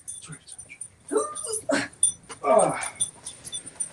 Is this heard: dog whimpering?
yes